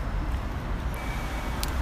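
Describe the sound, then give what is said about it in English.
Steady low rumble of city road traffic near Hyde Park Corner, a constant wash of engine and tyre noise at moderate volume, with a brief sharp click near the end. “So back into the traffic and then looking forward to lunch now.”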